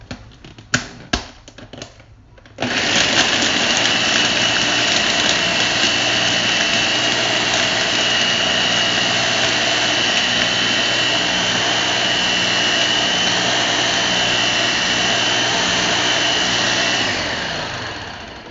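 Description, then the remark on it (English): A few sharp clicks, then a blender making a smoothie roars to life with a loud, steady whirring grind that holds for about fourteen seconds before winding down. No one speaks. “And when it's not rattling anymore, and when you turn off your blender and you don't hear any little rattles rolling around, then you know it's done.”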